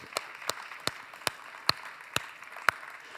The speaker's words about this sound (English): You belong to, you want to clap for that? Amen. Let's clap for that. It's Easter.